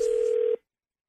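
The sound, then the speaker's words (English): A steady, loud telephone dial tone, opening a radio phone tap call, holds one mid-low pitch for about half a second, then cuts off abruptly into silence. “You'll hear it for yourself in your phone tap right now.”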